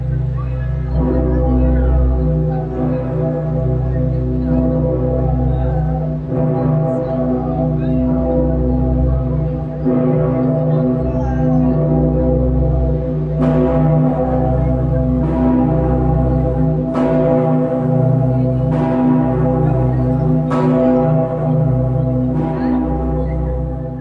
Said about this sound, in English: St. Peter's Glock at Cologne Cathedral in Germany. Cast in 1923 by the Heinrich R. K. Ulrich Bell Foundry, with a pitch slightly under C and a mass of 24,200 kilograms and a diameter of 3.22 meters